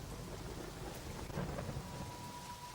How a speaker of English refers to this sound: I remember it's just rain. Why do we ever put rain in the movie? It's always hell. Yes. But it does look good. It does look good. And always those dreaded words on the call sheet, wet down.